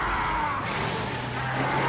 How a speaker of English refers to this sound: Grind those gears.